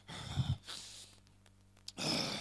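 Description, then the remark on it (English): A voice imitates the biblical David's heavy, labored breathing: a loud exhale, a brief pause, then another forceful breath, breathy with no words. “I could imagine David breathing so hard.”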